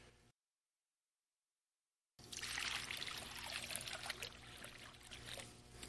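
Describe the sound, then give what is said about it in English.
After a brief silence, water pours steadily into a baptismal font with a bright, splashing trickle that continues for several seconds, fairly loud, with no one speaking, in preparation for a baptism. “I'm going to pray over this water.”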